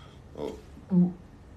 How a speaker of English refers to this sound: Oh. Okay, that's a burp. That's a burp.